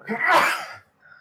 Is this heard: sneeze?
yes